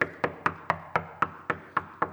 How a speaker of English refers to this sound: It's not how I roll, but I'm going to knock. I'm going to knock this sucker till I wear my knuckles out. He's going to keep knocking.